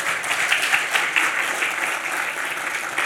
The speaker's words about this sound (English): Congratulations. Round of applause.